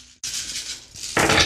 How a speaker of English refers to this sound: She's going to roll 15 dice.